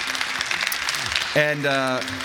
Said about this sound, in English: Thanks to our panel. Thanks, guys. Yeah, you can keep clapping for them.